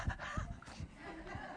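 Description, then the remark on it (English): A person imitates an excited puppy panting as it smells its master coming through the door, with quick, rhythmic breathy huffs repeated several times in a short burst. “It should be like the puppy smelling the master coming through the door.”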